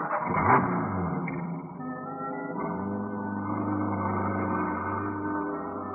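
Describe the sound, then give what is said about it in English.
A truck's engine rumbles steadily as it drives straight down a street, with a low droning hum that shifts in pitch partway through as it keeps rolling along. No voices are heard. “I drove as she directed, and we pulled up behind a row of stores.”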